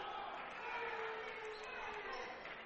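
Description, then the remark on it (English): A large indoor home crowd at a basketball game sends up a steady, unhappy roar of grumbling and jeers, loud and sustained with no pauses, reacting to a foul whistled against Raven Thomas, his fourth. “Not to the delight of the hometown crowd here.”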